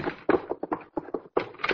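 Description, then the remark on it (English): A locked and bolted door is shaken and rattled in a quick series of solid thumps and clunks, the knocks coming in uneven bursts with brief pauses between them. “Whoever it was locked and bolted this door, I'll have to kick it down.”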